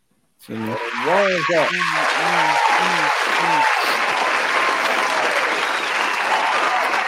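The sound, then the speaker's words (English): A loud, sustained round of applause starts abruptly and runs steadily to the end, with a quick series of short pitched whoop-like tones layered over the first few seconds. “I'm gonna give y'all a round of applause.”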